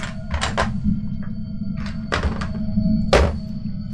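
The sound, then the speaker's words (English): Dice are rolled for a damage roll during a tabletop role-playing game, rattling and clacking in several short, irregular bursts of bright clicks, with a quieter tap in between, all over a steady low rumble and faint electrical hum. No one speaks. “Let me roll that real quick.”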